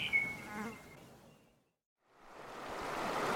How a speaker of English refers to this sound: A river. Whatever shall we do?